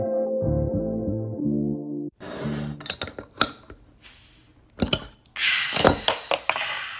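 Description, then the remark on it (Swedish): A short electronic melody gives way to a burst of glasses clinking in a toast, several bright, sharp chinks scattered among clattering, rustling noise. “Men jag tänker att vi skålar ut den här delen och gör oss redo för någonting lite smaskigare.”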